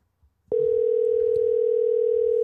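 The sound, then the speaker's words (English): A steady, loud phone dial tone, heard while a phone call is being placed, starts abruptly after a brief click and holds unbroken at a constant pitch, with no one speaking over it. “So why don't we call him, get him on the phone, wish him a happy birthday.”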